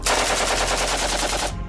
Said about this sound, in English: It sounds like a fucking gun. That was an AK-47.